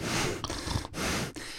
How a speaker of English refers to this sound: Okay, I will say he's breathing into the mic too much.